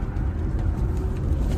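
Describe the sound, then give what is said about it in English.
A steady low rumble of a car driving past on a street, with heavy engine and tire noise holding an even level throughout and no voices. “Sorry, I'm just trying not to get hit by a car here.”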